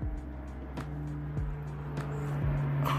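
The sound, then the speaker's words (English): A steady low engine drone with a constant hum rumbles throughout, like an airplane passing overhead, with a few faint clicks over the top and no talking. “the plane is flying by. I don't know if y'all can hear it, but I didn't want to get interrupted by a plane.”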